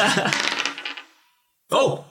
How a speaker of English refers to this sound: I tell you what, could you give me an intelligence check, but I will give you an advantage on this, where you can roll an extra dice if you'd like.